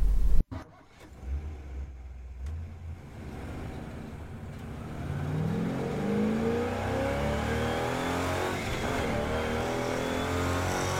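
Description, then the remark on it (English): A car engine revs up steadily in a Shell V-Power fuel advertisement, its pitch climbing and growling louder over several seconds, with layered rising tones like engines accelerating; no one speaks. “Make your engines sing.”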